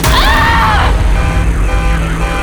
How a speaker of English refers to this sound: She's controlling all the vehicles. Miss Graves, that truck is coming straight towards us.